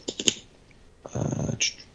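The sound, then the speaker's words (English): A few quick keyboard and mouse clicks while clicking through pages of the Fantagraphics website, a short pause, then a denser second-long burst of clattering keys ending in a sharp click. No one speaks. “I'm just clicking through their pages.”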